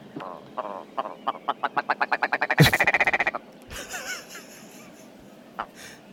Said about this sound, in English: It's like someone trying to clear their throat. Grandpa? A willow grouse. I'm sure I'm mispronouncing this. It's probably like a grouse.